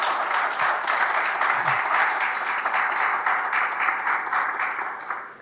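Steady applause from a crowd, a dense wash of many hands clapping at once, holding an even level throughout before thinning slightly at the end. No one speaks.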